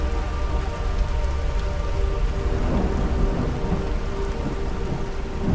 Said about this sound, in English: What? It's raining. The air is heavily ionized. Did I do this? say nothing more until we can discuss this in private. Someone care to explain how and why we have manufactured a storm?